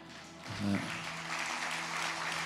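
A crowd claps steadily in a dense, continuous wash of applause, with a brief low tonal swell near the start and a faint hum underneath.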